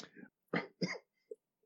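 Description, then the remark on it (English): A short run of harsh, rough coughs: a softer throaty one, then two strong bursts in quick succession, ending with a faint little grunt. “You can, when I'm not coughing”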